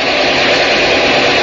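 A truck engine runs with a steady, loud, unbroken rumbling drone that holds constant throughout, with no voices over it.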